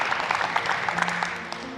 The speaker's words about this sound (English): You can clap for that.